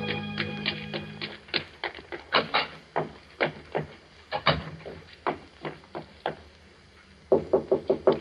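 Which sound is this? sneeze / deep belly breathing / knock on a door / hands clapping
knock on a door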